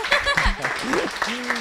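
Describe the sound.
A short burst of audience applause given as praise for a good answer, steady scattered clapping with voices calling out and cheering over it for under two seconds.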